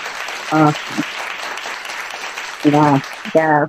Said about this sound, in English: Oh, hold on, y'all. I can't control this applause like I like. I'm sorry, these sound effects.